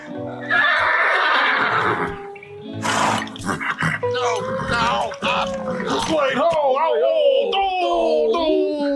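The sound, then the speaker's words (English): A loud horse whinnies repeatedly, its shrill, wavering neighs rising and falling over several seconds amid a burst of noisy commotion. “He smoked out a horse just so the horse could knock my man off and have him fall to the ground.”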